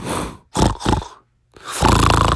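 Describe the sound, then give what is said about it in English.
A voice imitates snoring: a few rough, rasping snorts in quick succession, a brief pause, then a longer, louder grating snore. “And as she was falling asleep, you could hear her snoring like this.”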